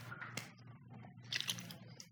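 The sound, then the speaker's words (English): Quiet mouth noises of a speaker drinking water: a few soft wet sips and swallows with a faint click, over a low hum. “You're going to answer so I can take a drink of water.”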